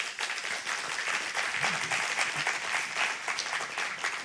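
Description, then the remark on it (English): Steady applause from an audience for the discussion participants at the end of a session, a dense wash of many hands clapping at an even level throughout with no break, moderately loud, with no one speaking over it. “So if y'all could give them a round of applause.”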